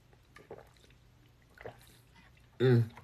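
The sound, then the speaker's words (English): Someone drinking a thick, chunky juice that is half sea moss: faint sips and gulps over quiet room noise, ending in a short, loud, voiced swallow or satisfied exhale. “Ooh, I gotta drink some of it down. It's gonna spill.”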